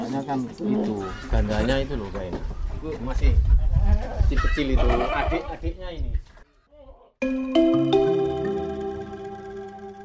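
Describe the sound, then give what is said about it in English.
A goat bleats repeatedly, loud wavering cries overlapping one another for several seconds, then a brief silence before soft sustained music begins. “But now, he has a goat to take care of.”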